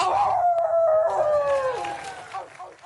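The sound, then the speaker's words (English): A person imitates a wolf howl: one long, sustained wavering tone that slowly dips in pitch and fades toward the end, fairly loud. “We give this one to our wolf.”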